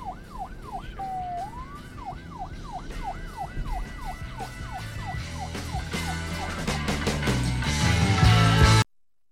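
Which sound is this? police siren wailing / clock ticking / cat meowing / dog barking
police siren wailing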